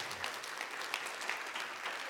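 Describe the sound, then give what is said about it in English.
An audience breaks into steady applause during a sermon, a dense patter of many hands clapping at an even level for a couple of seconds with no voices on top. “You can clap for that.”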